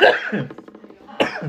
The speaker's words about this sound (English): This coughing-ass bitch over here